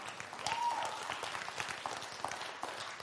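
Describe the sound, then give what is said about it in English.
An audience applauds in church, a dense, steady wash of many hands clapping at once that stays fairly even in loudness for about three seconds, with no voices standing out. “And we're clapping, but we can't even come to church when God lets us down.”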